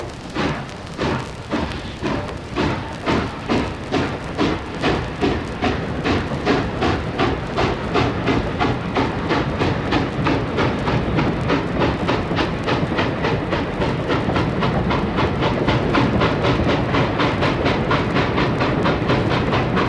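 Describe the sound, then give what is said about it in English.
A steam train chugs along steadily, its rhythmic clickety-clack on the rails loud, the regular beats quickening slightly as it gathers speed, with no voices. “It's a lot of work getting from one event to the other, so let's take a steam train, why don't we?”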